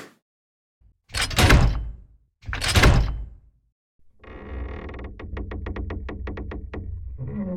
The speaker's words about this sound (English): Now, oh, what's that? Someone's at the door. Quick, open it up and let them in.